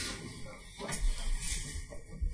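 A door is pushed shut: a brief sliding scrape and rattle, then a low thud, with a second soft knock at the end, over a steady faint hiss.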